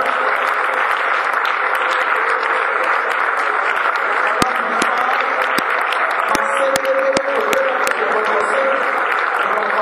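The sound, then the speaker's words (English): An audience clapping for Jesus at a prayer fast service, a dense, steady wash of many hands with sharper individual claps popping through, sustained loudly across the whole stretch with no talking. “In the name of Jesus, make it to clap for Jesus.”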